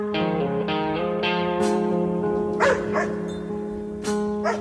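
A dog barks repeatedly in short, irregular bursts, loud, over steady background music with sustained tones.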